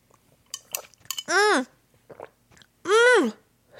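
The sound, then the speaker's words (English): Someone sips tea from a cup amid a few soft clinks and quiet slurps, and two drawn-out, satisfied vocal sighs follow, each rising and falling in pitch. “Let me sip my tea.”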